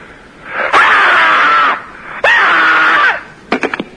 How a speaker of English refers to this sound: Meanwhile, to add to your screamscape